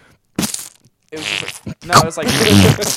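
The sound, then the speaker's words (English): A person imitates a wet fart with their mouth, a few sputtering, buzzy bursts with flapping texture, fairly loud, with no real talking. “that would sound like a wet fart.”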